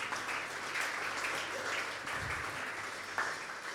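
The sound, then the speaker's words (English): Steady audience applause as the audience gives itself a round of applause, a dense wash of many hands clapping at a fairly even level throughout, with no voices rising above it. “Give yourselves a wee round of applause.”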